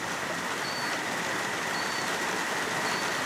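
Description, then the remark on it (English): Heavy rain pours down outside on a cattle breeding farm in a steady, dense hiss that never lets up, loud, with no voices, just an unbroken wash of falling water. The rain began late the previous night and has not stopped. “So the rain started late last night and it has not stopped, and it's bloody awesome.”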